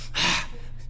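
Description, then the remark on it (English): A single deep breath sharply drawn in, fairly loud, lasting about a quarter second, with no talking around it. “I'm trying to make sure I don't miss my breathing.”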